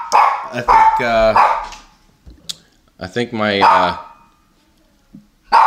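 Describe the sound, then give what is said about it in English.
A dog named Rebel lets out two loud, drawn-out barking bursts about two seconds apart as someone comes in at the door, with a person speaking briefly between and after them. “Oh, here goes Rebel. Someone's out the door. What's he fired up about?”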